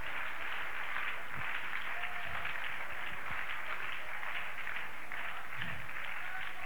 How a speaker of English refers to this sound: Start praising God right now. Clap your hands.